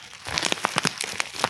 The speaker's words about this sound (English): I'm putting a bag of whole roasted crickets on the table. Do some ASMR.